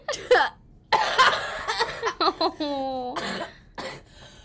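A run of harsh, phlegmy coughs with mucus coming up, in uneven bursts, fairly loud, with a short voiced, strained throat sound partway through before a few more coughs.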